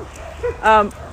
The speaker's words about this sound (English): oh, we can't go there because of the dogs. You hear the dogs barking?